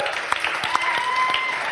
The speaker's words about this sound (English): Thank you so much to Scott Fardy and to Fiona Coghlan for coming along. A round of applause to the two of them as well, please.